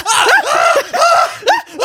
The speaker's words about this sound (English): You just start screaming.